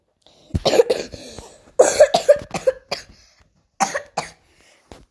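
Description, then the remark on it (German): A loud coughing fit: several harsh coughs in quick bursts, a pause, then a couple more coughs trailing off into a faint final one. No talking. “Ich habe erstmal einen Hustenfall bekommen.”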